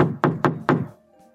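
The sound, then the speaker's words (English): Three hard, quick knocks on the wooden door of an office at the back of a store, loud, each with a broad, resonant thud, followed by a short fading tail and quiet. “but she walked straight to the office in the back and knocked hard on the door.”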